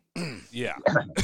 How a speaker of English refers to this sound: Good cough there, ….